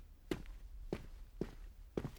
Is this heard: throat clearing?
no